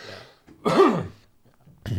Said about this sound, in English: Sorry, coughing.